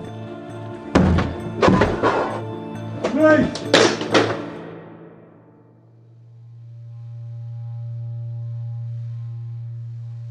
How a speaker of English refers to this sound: Martin gives the signal, and they smash down the door.